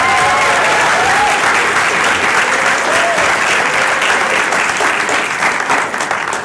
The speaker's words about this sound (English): But can we give C2E2 a big warm applause for hosting us?